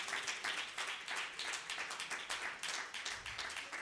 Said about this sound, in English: Why don't you clap your hands as you're seated? Hallelujah. Come on. Hallelujah.